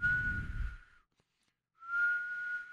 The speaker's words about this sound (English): That's a whistling sound. That's because cold air is coming back into your house, and all the warm air is leaving. The cold air is infiltrating your residence, and it's costing you money on your heating bill.